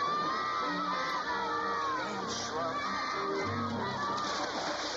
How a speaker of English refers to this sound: Now everybody's diving in. Now everybody's diving in. Why are water every- fight! Water fight!